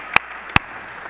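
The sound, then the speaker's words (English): Two sharp, separate hand claps, spaced under half a second apart, ring out over a steady background hum, like the scattered first claps of an audience starting to applaud. “The story is told of a women's group who, yeah, let's applaud that.”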